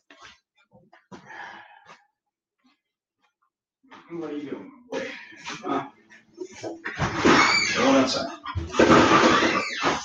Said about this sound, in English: Oh man, my pup is being super noisy.